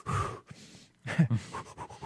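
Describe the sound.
A person mimics Lamaze breathing, puffing out a series of quick, rhythmic pants and huffs, with a brief pause before the breaths pick up again in short bursts.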